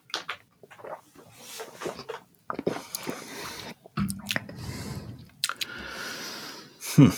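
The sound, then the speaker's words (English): Sips of a sour beer: a few wet slurps and swallows with smacking mouth noises, scattered across several seconds, ending in a louder gulp, with faint murmuring in the background. “Have we taken a sip of this fucking thing yet, or are we just stalling?”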